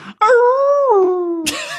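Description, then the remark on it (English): A person voices an elephant impression: one loud, sustained, wailing note with a strong harmonic tone, slowly sliding lower, then ending in a breathy, raspy burst. “can we hear your elephant impression again?”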